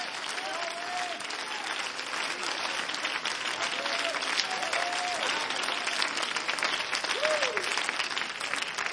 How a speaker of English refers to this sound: Come on, we need to clap our hands right now and give God some praise.